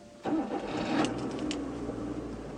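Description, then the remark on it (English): A car engine cranks and catches with a sudden burst, then settles into a steady, low idle rumble with no one speaking. “In the car, I drove us towards campus.”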